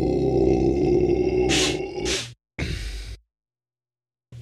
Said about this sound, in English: We're a lively bunch. You're blowing your nose. I'm belching.